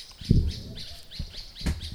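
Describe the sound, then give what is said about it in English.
Birds chirp repeatedly in quick, high-pitched calls, with a few low thuds underneath and no one talking. “I think the birds agree with me too.”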